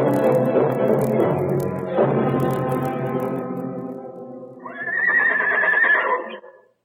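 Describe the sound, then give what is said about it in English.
A horse lets out a long, loud whinny, its voice wavering and trailing off before a second shrill, rising neigh bursts out and quickly fades. “Got your horse tied”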